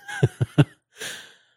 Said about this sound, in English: All right. Sorry, I had to cough.